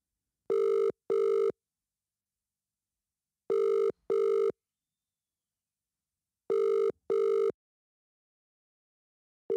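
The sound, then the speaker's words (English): An outgoing phone call rings without being picked up: a steady double-pulse ringback tone repeats three times with silent gaps, a fourth beginning as it ends. Clear, with no voices. “You just had your phone. How can you not answer it?”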